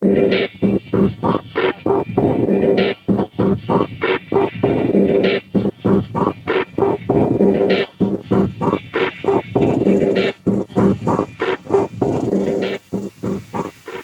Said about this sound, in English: There is a hidden electronic beat of sorts underneath that wobbly drone, the mutator drone. And this is what it sounds like, sped up 3x.